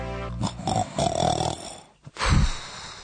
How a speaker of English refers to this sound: That's a listener to another radio station. Is that familiar? A familiar sound. It certainly is to me. Good grief. Snoring.